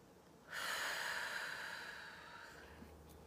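A single slow, deep breath, drawn in with a soft airy hiss that gradually fades away, taken during a guided breathing exercise. It is fairly quiet, and no one speaks.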